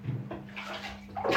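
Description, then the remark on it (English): Water churns and sloshes, then surges into a loud, heavy splash at the very end as someone goes down a water slide, with a faint steady hum underneath and no voices. “I'll go down the water slide, but I'm going to make a big splash.”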